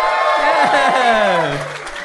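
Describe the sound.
A crowd claps and cheers loudly and steadily, with whoops and shouting voices rising over a dense wash of applause that continues throughout.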